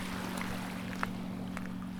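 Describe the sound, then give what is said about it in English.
Ocean waves wash steadily onto a beach on the southern part of Sanibel Island, past the pier, on a calm day, in a continuous, moderately loud rush of surf, with a low, constant hum underneath and a couple of faint splashes. “Once you get past the pier, you are on a more southern part of the island, and the waves here are a bit stronger. You can probably hear that.”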